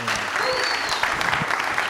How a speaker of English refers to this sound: I get an applause for losing.